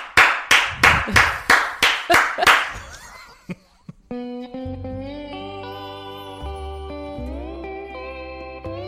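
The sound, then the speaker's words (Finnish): One person claps hard and loud, about eight sharp, crisp claps in a quick steady rhythm, then a pause before a sustained tonal music bed comes in. “Mä osaan taputtaa ihan hemmetin lujaa.”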